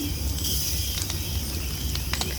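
A campfire in a forest at night burns with a steady soft hiss and low rumble, broken by several sharp, irregular pops and crackles of burning firewood, moderately loud.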